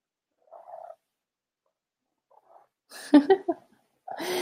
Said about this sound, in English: Can you guys hear my cat purring?